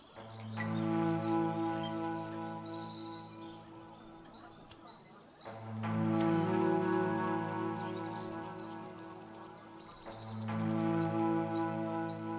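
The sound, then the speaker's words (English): Birdsong chirps and twitters high above a warm, sustained droning chord that swells in three long phrases, played back from a cassette tape with no voices. “You think those birds are a field recording?”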